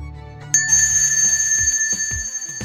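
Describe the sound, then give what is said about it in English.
A bell in a depot, not rusted or dusty, is struck once and its bright, high tone rings on steadily, sustaining clearly over a background of low, rhythmic thudding beats. “Gil decides to ring that bell”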